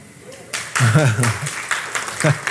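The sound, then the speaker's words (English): An audience, married folks among them, breaks into loud, dense, hard applause about half a second in, a steady wash of clapping that continues to the end while a man talks over it. “That hard clap. The married folks giving the hard clap.”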